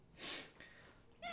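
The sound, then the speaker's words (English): A cat named Miss Kitty lets out a short meow at the very end, after a breathy, sniffing burst of noise; no one is talking. “Oh, Miss Kitty just intervened.”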